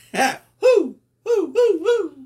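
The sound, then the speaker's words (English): Hoots from a big owl right beside the speaker: a short breathy opening call, a pause, then three quick mid-pitched hoots that each slide downward, loud and clear with no talking over them. “Yes, there's an owl. It's a big one right beside me.”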